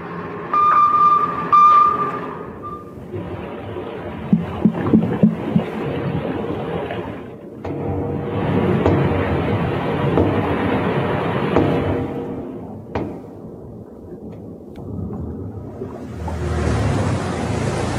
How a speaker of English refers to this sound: Yesterday, a Canadian P-3 search aircraft detected knocking sounds coming from where the sub could be. Here is what that sounded like.